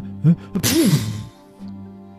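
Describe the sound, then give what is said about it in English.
A single, theatrical sneeze, likely a voice acting it out: a short intake "ah" followed by a loud, breathy, noisy "choo" burst that quickly trails off into quiet. “He turned away to sneeze.”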